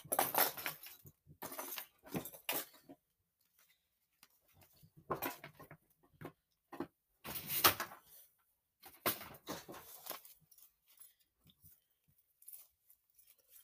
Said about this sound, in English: Oh, the guinea pig is moving around.